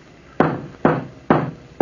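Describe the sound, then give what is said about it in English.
Heavy pounding on a door to wake a sleeping old man inside: four loud, booming thuds in a slow, steady rhythm, each one striking hard and ringing briefly before the next. No voices are heard. “Hey, you old Peter, wake up before I pound the door down.”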